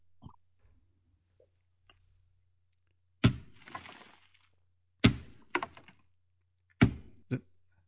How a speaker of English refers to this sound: That was a rock throw. I didn't get a knock. I got a rock throw, and it was right at me. It hit the side of the tree, and I couldn't tell where it came from.